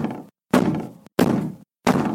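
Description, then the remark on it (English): Loud, heavy banging, like fists pounding on a door, comes in forceful, evenly spaced blows, each with a booming ring that cuts off into brief silence before the next. “They were both starting towards the stairs, more than a little startled now, when the knocking became loud, insistent banging.”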